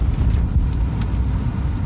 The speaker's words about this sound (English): Right now, I'm driving a police car. And we're going up a one-way street. That's cool.